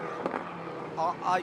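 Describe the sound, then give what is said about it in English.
Race cars, the rest of the field, drive past under a full course yellow, two quick engine whines swelling and fading one after another over a steady wash of background noise, moderately loud. “Here come the rest of the cars behind.”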